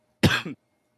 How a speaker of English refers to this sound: So there's that cough.